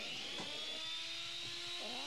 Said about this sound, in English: Chainsaw.